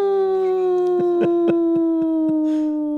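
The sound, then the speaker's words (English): A person imitates their dog singing at an ambulance: one long, steady, tonal wail that slowly slides lower in pitch over about three seconds, with a few soft rhythmic pulses in the middle. “Your ability to mimic your dog.”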